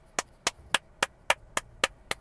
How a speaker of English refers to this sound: The lady behind me is clapping.